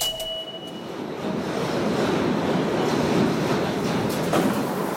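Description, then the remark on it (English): A New York G train subway rumbles steadily along the tracks, running south to Brooklyn, a dense, continuous roar with rattling clatter, heard from inside the car, with faint tonal whines early on and no voices. “A lot of people who take the G train south to Brooklyn get off at stops that connect to Manhattan.”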